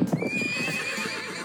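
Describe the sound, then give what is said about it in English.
A horse whinnies loudly, its neigh trailing into a long wavering tone, while hooves clip-clop quickly underneath in a steady rhythm. “Whoa! Hold your horses.”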